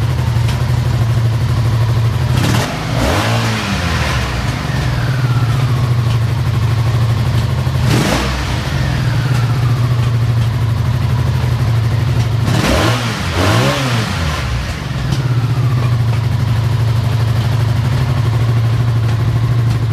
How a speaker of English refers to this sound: The popping's half unburnt gas still sitting in the exhaust from where I flooded it. Okay. And I might still have a float that's not set 100%. I'm going to play around with the idle.